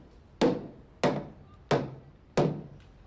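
Four loud, hard knocks of a child banging a cane on a wall in a house, evenly spaced about two-thirds of a second apart, each a sharp woody thud with a short decay, with no talking.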